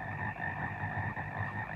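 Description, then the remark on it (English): A dense chorus of frogs croaking together in a steady, continuous layer, fairly loud, with no talking over it. “Frogs everywhere. Another scene of frogs everywhere.”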